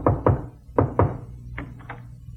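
Knocking on a door, loud: two quick pairs of solid, hollow thuds, then two softer raps trailing off. No voices.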